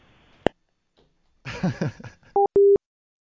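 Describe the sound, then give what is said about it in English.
Two short, steady electronic beeps from a microwave sound in quick succession, loud and flat in pitch, following a sharp click and a brief muffled voice. “Can you turn that beeping off? It's really distracting.”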